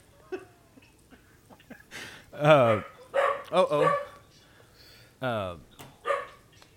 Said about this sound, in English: Uh-oh. Hold on. Dogs are going crazy.